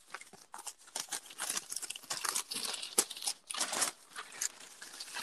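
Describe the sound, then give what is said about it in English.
Paper crinkling and rustling as an award envelope is handled and torn open at a mock award ceremony, a continuous run of crisp, crackly bursts for several seconds with no voices. “You're just fuck with the paper and try to open it.”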